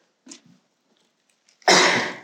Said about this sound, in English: I hate to cough into these things because it gets a little bit loud.